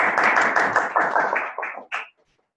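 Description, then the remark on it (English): A short burst of applause from a group for Havelock North High School and the session's experts: dense overlapping claps that stay loud for about a second and a half, then thin out and stop, with one last clap at the end. “So a big round of applause for everybody today.”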